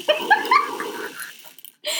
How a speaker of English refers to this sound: Just for those of you who are listening, that's the timer that comes with the game that's making that weird-ass noise. So, I don't... That's not a sound effect that we're creating.